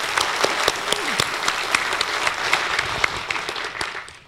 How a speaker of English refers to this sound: How about a round of applause for the woman who puts together all of these programs